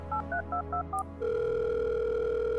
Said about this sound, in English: So you pick up the handset and dial Steele's number.